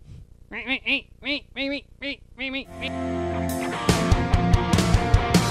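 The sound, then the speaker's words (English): A person mimics a duck with about six short, nasal quacks in a quick, steady rhythm, fairly loud, before a dense, busy wash of sound takes over. “And if not, well, you can always make a really cool duck. Goose.”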